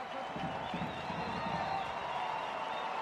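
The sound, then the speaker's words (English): A stadium crowd applauds RSL player Chicho as he is substituted off the field, some of the crowd behind RSL's bench on their feet; a steady wash of clapping and murmuring cheers holds at an even level throughout, with no single voice standing out. “Chicho getting a hand. Some of the crowd behind RSL's bench on their feet.”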